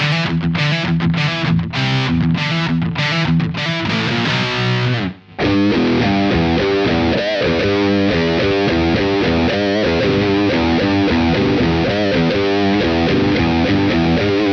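Loud, distorted heavy metal guitar with some delay and a drenched, reverberant wash: staccato chugging bursts at first, a brief cutout, then a thick, sustained wall of riffing. No voices.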